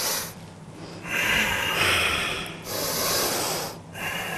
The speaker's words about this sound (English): So essentially, it's called diaphragmatic breathing. The breathing is meant to be into the stomach. This is the diaphragm.